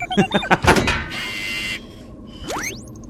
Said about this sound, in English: I'd better knock, I suppose. He's knocking.